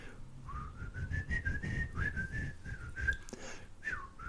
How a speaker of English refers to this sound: Peer Gynt, from Grieg's Peer Gynt, and he whistles the theme of the Hall of the Mountain King. Is that what it is? I'm gonna try and whistle into the mic without, you know, making a distorted sound, but that theme, if you're not familiar with it, is.